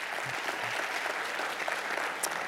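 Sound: audience cheering and applauding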